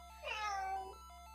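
A single drawn-out cat meow played as a soundboard effect, clear, rising then falling in pitch over about three-quarters of a second, heard alone against a faint steady background hum.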